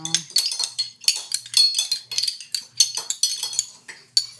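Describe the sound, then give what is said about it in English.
Rapid, bright clinking of cups and cutlery while coffee is made with dried mint leaves, a dense run of sharp metallic and ceramic taps repeating throughout, fairly loud, with a faint low murmur underneath. “We're just clinking.”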